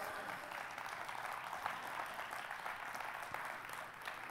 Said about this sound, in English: I appreciate your clapping your hands.